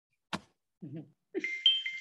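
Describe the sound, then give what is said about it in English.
A short phone notification chime: a quick click, then a couple of soft low blips, ending in a bright, ringing high-pitched tone that sustains briefly. Moderately loud, with no talking over it. “Let me turn off the volume on my phone, because that was very rude.”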